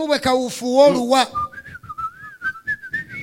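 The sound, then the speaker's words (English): A brief voiced hum gives way to someone whistling a short, wavering tune, a thin clear tone rising and falling in pitch, moderately loud, with soft shuffling underneath. “And you know, because of too much fear, you know, he tried to behave as if he was fearing nothing and walked through while whistling.”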